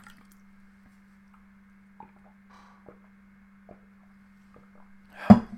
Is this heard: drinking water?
yes